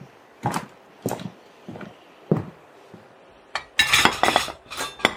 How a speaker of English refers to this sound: Let's just sit at that table. We'll just shove the dishes aside.